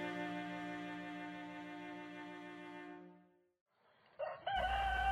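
A rooster lets out a long, drawn-out crow that gradually fades, then after a short pause a second loud crow starts up.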